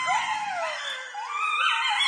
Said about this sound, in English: Wow, this coyotes last night. You know what, though? We had the blue moon, right? They're going nuts.